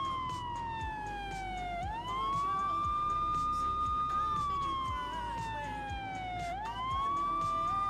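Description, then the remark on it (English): A police car siren, switched on while tailing a car to pull it over, wails loud, gliding slowly down and sweeping back up in long cycles over a steady rumble of engine and road noise. “Hey, boys, he turned his sirens on.”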